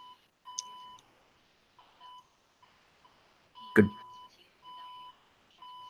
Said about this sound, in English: You at a hospital or something? What happened? It's like, I just heard beeping, like it was like...